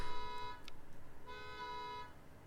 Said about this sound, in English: Anyway, there was a car alarm going off in case anyone couldn't really hear it.